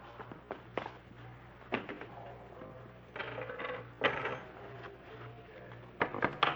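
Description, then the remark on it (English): Pocket contents, including a lot of paper money, are set down on a table: a scattered series of sharp clicks and light knocks, with a few short bursts of rustling, all over a low steady hum and no talking. “All right, take everything out of your pocket, Schaefer. What? Come on. Just put it right there on the table.”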